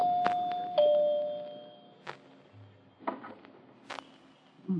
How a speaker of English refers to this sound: Now, where's that doorbell?